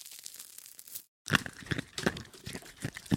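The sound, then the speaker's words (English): A face mask being peeled off: crinkly, sticky tearing and crackling in two stretches split by a short silence, with sharper snaps in the second half. No one speaks. “Let me just remove this face mask really quick.”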